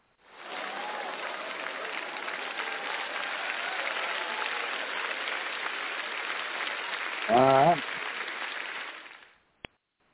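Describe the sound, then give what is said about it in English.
An audience claps steadily for about nine seconds, a dense, even wash of applause, with a short whoop rising through it near the end before it fades out. “Well, it's nice that we have an audience that'll clap for us.”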